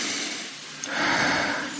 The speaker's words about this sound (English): But just today, feel this, and also try to break the breathing patterns. For example, you will usually breathe like that.